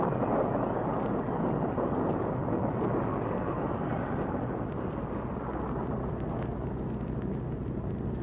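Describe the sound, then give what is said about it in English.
A heavy tropical storm roars steadily, with a dense wash of wind and rain and a deep, continuous rumble of thunder, loud throughout and without voices. “We're in this dashed storm.”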